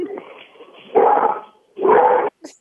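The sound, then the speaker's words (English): A dog barks at somebody it saw outside, letting out two loud, drawn-out barks in quick succession, preceded by a low grumbling sound, with a short high yip at the very end. “Sorry, my dog just saw somebody outside and decided it didn't like it.”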